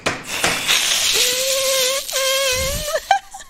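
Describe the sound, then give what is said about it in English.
Voices imitate cats hissing: a breathy hiss opens, then gives way to a sustained, squeaky vocal tone that wavers and breaks off in short bursts near the end. “Everyone in favor? Hiss.”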